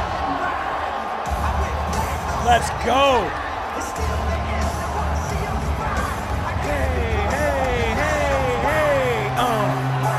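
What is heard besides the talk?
arena crowd cheering loudly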